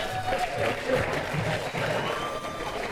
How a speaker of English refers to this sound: You're supposed to clap right there.